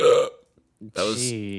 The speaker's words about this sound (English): That was exaggerated, but there was a real hiccup under there. That exaggerating just made it hurt more. I wish I didn't do that.